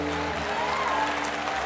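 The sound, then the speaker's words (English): A crowd of people applaud together, giving the Lord a hand clap of praise, a dense, steady wash of clapping that holds an even loudness throughout, with faint sustained musical tones humming underneath. “Well, go ahead and just give the Lord a mighty hand clap of praise.”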